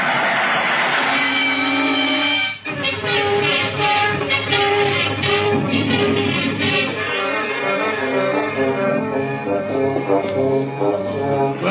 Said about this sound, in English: There's the switch up ahead. Come on. Here comes the train now. We'll make it.